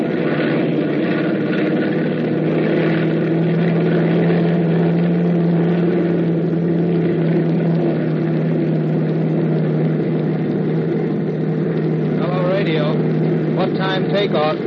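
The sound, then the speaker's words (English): Airplane engines roar loudly and steadily as the plane takes off, a dense, continuous drone filling the whole stretch, with a voice briefly cutting through near the end. “It all starts to add up when the plane takes off.”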